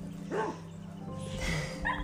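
Two dogs, one named Bear, bark and yip excitedly as they greet each other along a backyard fence line, three short sharp bursts spaced across a couple of seconds, over a steady low background hum.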